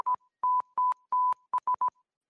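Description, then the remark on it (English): Steady, mid-pitched electronic beeps spell out an SOS in Morse code: three long tones followed by three quick short ones, clear, with no voices. “Is that actually SOS? I can't tell. Yeah, that's actually SOS.”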